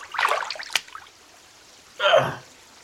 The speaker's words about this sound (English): All right, let me just get up now. Oh, here we are. Yes. And as the water comes up to my chair seat,